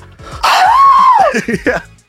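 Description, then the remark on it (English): A man's voice imitates the panicked scream of a man putting a tarantula on his face: one loud, drawn-out cry that rises, holds and sinks in pitch, then breaks into a few short, choppy vocal bursts. “Number 1 is when he puts a tarantula on his face.”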